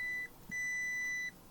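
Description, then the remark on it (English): A multimeter's shrill electronic beep sounds twice: a short chirp, then a longer steady tone of nearly a second, thin and fairly quiet over faint background hiss with no talking. “if I have to turn my music down to hear my meter, there's something wrong.”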